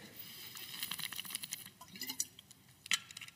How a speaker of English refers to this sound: I'm going to have some more water.